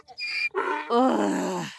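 donkey braying

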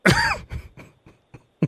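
coughing

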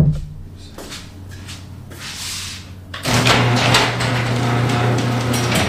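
door opening or closing

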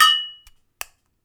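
glasses clinking

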